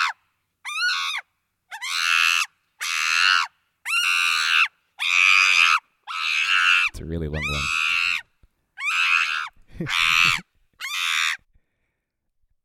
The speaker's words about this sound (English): Let's have a look. Chimpanzee screaming. Yeah, that works. Yeah. Yeah. So yeah, you know, people come over, scream like this.